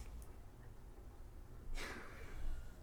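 A female cat snores right next to the microphone, one soft, breathy snort rising out of a quiet background hum midway through, with a faint hint of the next breath at the end.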